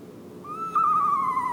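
A single long, wavering owl hoot rises out of a low background hush and holds steady before sliding slightly downward. It is clear, with no one speaking.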